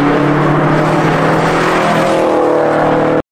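A car engine revs loudly and steadily, its droning harmonic tones holding for a few seconds before cutting off abruptly, with no voices over it.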